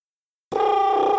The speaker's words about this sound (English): That's me. I was supposed to do a drum roll, but it sounded like a phone ringing. Sorry about that.